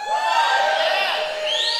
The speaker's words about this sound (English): Are you ready? I'm expecting shouts online and shouts in the house.